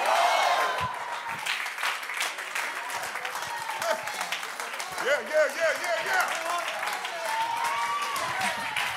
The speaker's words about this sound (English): Clap your hands. Come on, magnify the Lord.